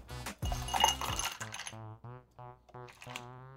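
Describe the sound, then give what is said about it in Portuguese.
A cocktail shaker is shaken gently, not vigorously, with ice for about a second, just to mix the cocktail's components, producing a clinking rattle, after which a person starts talking. “Esse coquetel a gente não bate vigorosamente bem, a gente bate levemente só para misturar os componentes.”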